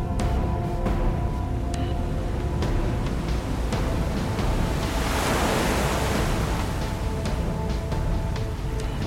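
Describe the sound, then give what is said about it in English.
Ocean waves surge continuously in a dense, steady roar, with one swell building and breaking near the middle and scattered splashy crackles throughout. No voices are heard. “The city's grandeur and its untold mysteries were sealed away, lost beneath the undulating waves of the sea.”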